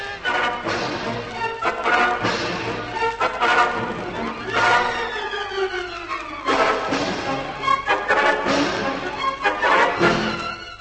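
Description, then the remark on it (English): An immense pig squeals loudly as it charges and knocks a man to the ground, amid a frantic commotion of harsh, noisy bursts, one long high squeal sliding downward in pitch midway through, the chaotic noise continuing throughout. “With a squeal of hatred, the immense pig flings himself at Algy and knocks him to the ground.”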